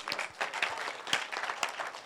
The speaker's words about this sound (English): Once again, the Christians are clapping.